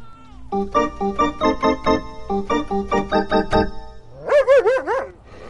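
A dog whines in a rapid series of short, pitched yelps, then lets out a loud, wavering yowl that rises and falls, with no one talking.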